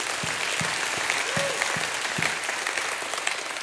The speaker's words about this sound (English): If that's you, give God a hand. Clap for praise.